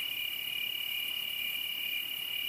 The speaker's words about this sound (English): It's late summer up here at the cabin. We can hear the crickets, and the pygmy owls start to chirp around sunset.